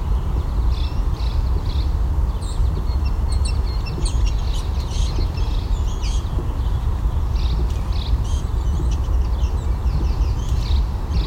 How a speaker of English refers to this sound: Blue-gray gnatcatchers, and a couple American Red Starts doing this bubbly ticking sound, rattly sound.